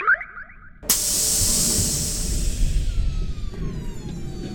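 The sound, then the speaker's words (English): A sci-fi airlock passage extends from the side of a spaceship: after a few faint tones, a sudden loud pneumatic hiss bursts out and holds steady over a low rumbling groan, with a faint tone sliding downward. “A passage to the airlock extends with a groan from the ship's side.”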